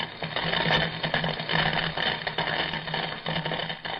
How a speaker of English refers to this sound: Triumphantly, his eyes shining like a maniac's, the Atom Man extends his strange metal gloves, laughing wildly as the jagged green sparks of lightning pitchfork into Clark Kent's body and strike him to the earth.